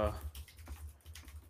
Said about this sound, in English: I see we're all typing now. Yeah, we're all checking that one out real quick.